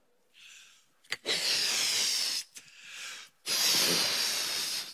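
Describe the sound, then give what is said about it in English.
Air hisses in repeated rushes as a balloon is inflated, with two long, loud bursts alternating with softer, shorter ones, separated by brief pauses. No one speaks. “So this always helps me. It's a balloon.”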